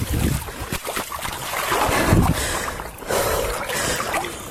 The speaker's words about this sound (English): Like, you can hear her breathing as she's walking into the water. Imagine how cold that is.